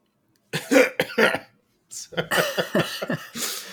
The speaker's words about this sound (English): I mute my mic and you cough anyway. Are you kidding?